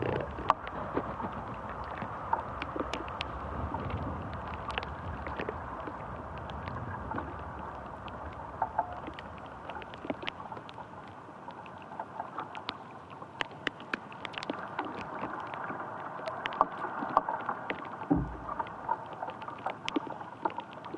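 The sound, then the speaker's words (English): Tree branches shift and wood creaks in the wind, leaves blowing, over a steady, breathy rush of moving air, with scattered sharp ticks and creaks throughout and no voices. “so you can hear the branches moving. And the wood creaking.”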